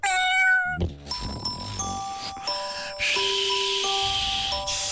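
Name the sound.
cat meowing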